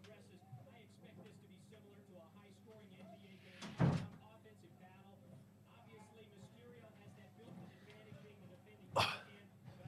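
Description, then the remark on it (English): A door is shut with two fairly loud thuds several seconds apart, standing out over a steady background of murmuring voices and low room noise. “He's left the door open. I'm going to go take care of it.”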